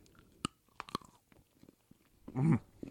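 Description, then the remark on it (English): Crisp crunching as someone bites into a dark chocolate bar with Cocoa Pebbles cereal pieces in it, sharp snaps near the start followed by quieter chewing and a louder crunchy burst toward the end; no talking. “It was just going to taste like a crunch bar.”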